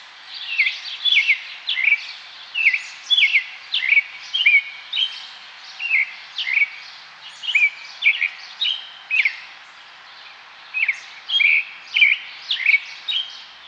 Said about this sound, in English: Can you tell that one bird is much closer and some of the others are a little farther away?